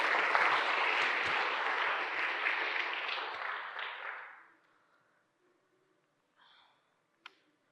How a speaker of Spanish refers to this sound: Thank you. Muchas gracias. Un aplauso a los modelos.